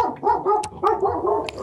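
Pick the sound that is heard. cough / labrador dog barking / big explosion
labrador dog barking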